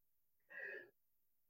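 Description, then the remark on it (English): A short, stifled sneeze, breathy and muffled, lasting under half a second in an otherwise quiet moment, followed by the abrupt onset of another loud burst right at the end. “Bless you.”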